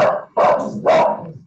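A dog at home barks three times in quick succession, interrupting a conversation held while working from home, loud and sharp with a rough, mid-pitched tone and short gaps between each bark; no one speaks over it.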